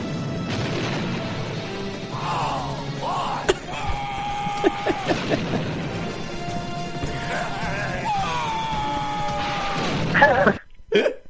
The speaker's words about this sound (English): It's just like three great Stallone yells from the helicopter. Just glorious. Just so good.